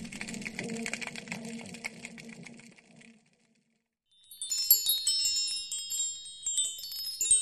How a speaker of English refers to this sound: A fish chime hangs from his front door.